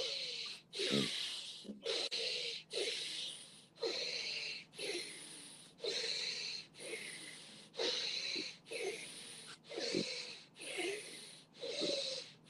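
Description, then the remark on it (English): Airy breathing through the left nostril only, mouth closed and right nostril held shut with the right hand, each inhale and exhale a hissing rush of air in a steady, unbroken rhythm, with no talking. “Continue breathing left nostril only. Mouth is closed.”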